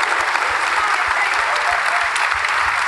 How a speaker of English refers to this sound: Whilst you stood up, a big round of applause for the players, please, as well.